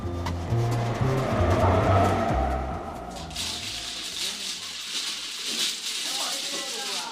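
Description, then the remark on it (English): Mahjong tiles clack and rattle in a busy, irregular clatter of sharp hard taps as people play mahjong in a hut behind a house in Taiwan, with a low murmur of voices underneath during the first few seconds. “Well, it's the sound of Mahjong tiles.”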